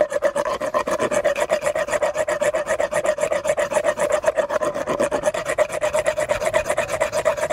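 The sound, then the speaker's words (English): A small power dental float rasps steadily against a sedated horse's teeth, a loud, continuous buzzing grind with a rapid gritty pulse over a constant mid-pitched motor whine, with no voices. “So I'm gonna start with the small float and get him used to the sound, make him feel comfortable, and I start working my way down.”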